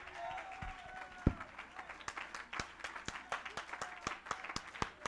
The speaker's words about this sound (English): Somebody that's got a testimony ought to stand to your feet, clap your hands, and give God a shout.